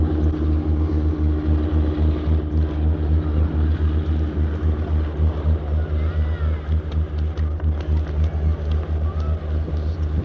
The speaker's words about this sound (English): We are now at Derby Airport, the East Midlands Airport. You can hear a plane being run up now.